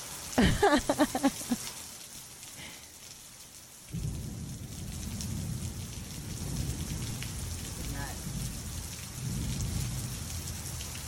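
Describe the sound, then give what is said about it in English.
Heavy pouring rain hisses steadily throughout while deep, rolling thunder swells in partway through and rumbles on continuously and loudly, with a brief burst of sharper sounds at the very start; a thunderstorm with lightning. “Yeah, it's definitely rain. It's rainy and rain. All that thunder and lightning.”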